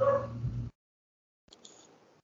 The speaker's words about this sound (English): My bad. Dog barking in the background. No worries.